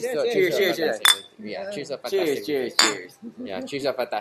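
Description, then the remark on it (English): Glasses clink together in a toast, with two sharp, bright chimes standing out over people talking. “Cheers to a fantastic weekend.”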